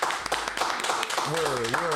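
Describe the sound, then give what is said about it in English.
Several people clap together in a brief, steady burst of applause, loud, with a man's voice talking over the second half; the applause celebrates being picked up by the new network Rare Media. “Round of applause. Round of applause.”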